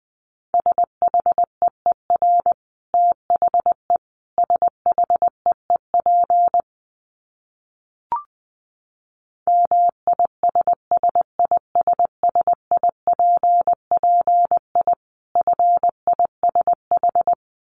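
A steady single-pitched beep keyed on and off in quick dots and dashes, Morse code sent at 20 words per minute in several bursts, with a short click and pause partway through.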